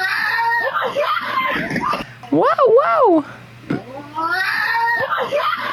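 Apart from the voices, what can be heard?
bobcat screaming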